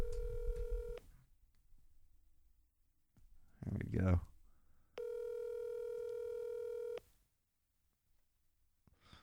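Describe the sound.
A phone call rings out on the line as someone is called to join the show: two long, steady electronic ringback tones separated by silence, with a man briefly speaking between them, clear.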